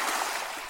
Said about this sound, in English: So if you're missing like the sounds of the sea, you just have programmed waves into this little speaker and then you're just like, oh, there we go. We're at the side of the beach.